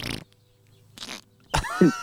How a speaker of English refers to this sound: He likes the farts. Who doesn't? I love them.